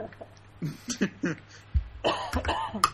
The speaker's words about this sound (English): Now I really have to cough.